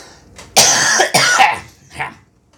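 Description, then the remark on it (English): Two harsh, forceful coughs burst out in quick succession, loud, followed by a weaker raspy hack as the fit trails off; a persistent cough of about three weeks with no other symptoms. “every now and then it's like that, where it's like terribly, horribly violent.”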